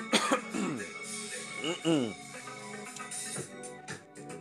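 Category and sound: human body sound, throat clearing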